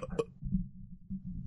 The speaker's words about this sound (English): For those of you that are subbed, you get to listen and hear our burps. Aren't you lucky?